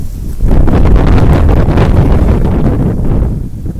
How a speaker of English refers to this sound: Ah! Can you believe this? I mean, I figured it'd be windy, but I wasn't expecting this.